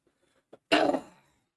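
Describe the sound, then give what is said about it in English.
A single harsh cough bursts out after a brief catch of breath, lasting about half a second before fading into silence. No one speaks. “I hate coughing, man.”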